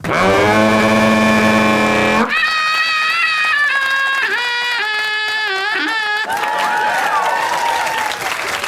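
Loud, drawn-out sheep bleats with a wavering, quavering pitch, several calls running into one another over a rough, noisy background, with no one talking.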